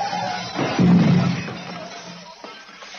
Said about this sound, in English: Ah, well, there's your ghost. See the glass? We drove through... A mirror. Those headlights we saw were our own.